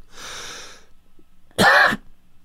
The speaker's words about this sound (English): Don't start coughing.